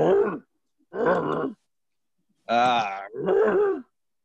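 A human voice imitates a walrus with four loud, gravelly, groaning barks, each about half a second long, separated by brief silences; the third is higher and more strained.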